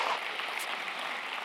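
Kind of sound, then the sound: crowd, round of applause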